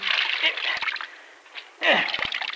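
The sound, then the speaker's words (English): Rinsed wet laundry being wrung out by hand, water splattering and trickling in two fairly loud bursts with a brief lull between them. “Here, give me that stuff. Let me wring it out for you.”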